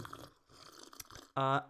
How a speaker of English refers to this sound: Don't mind us while we just have a little sip of water from our... I don't know what these are. New mugs here. Yeah, these new mugs.